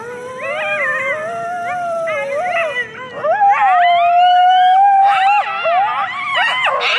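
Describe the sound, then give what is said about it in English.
A coyote group yip howl: several wavering, rising and falling howls overlap with sharp yips and yelps, loud and continuous for several seconds, with no talking. “So that is called the group yip howl.”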